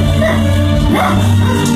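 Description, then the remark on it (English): A dog barks a couple of short times over a steady humming background that sounds like music or a low drone. “Look at that dog.”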